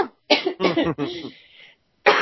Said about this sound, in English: I just need this coughing to stop. You know, when you've got a horrible tickly cough that won't go away? Yeah. It's one of those.